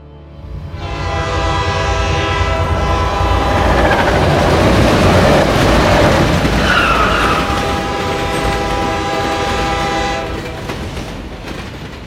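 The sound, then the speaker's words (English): A train headed to Syracuse rumbles along steadily, with a broad low roar, clattering wheel noise and sustained horn-like tones sounding over the motion for about twelve seconds, fairly loud, no voices. “I'm on a train to Syracuse.”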